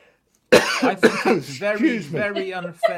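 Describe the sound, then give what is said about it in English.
Two sharp coughs in quick succession after a moment of silence, followed by a longer voiced, throaty sound as the person recovers. “I'm going to cough.”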